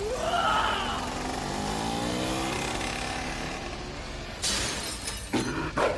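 A motorcycle engine revs and roars as it accelerates for a stunt jump over 15 buses into a lion's mouth, then a loud crash with shattering, smashing impacts follows in a few sharp bursts.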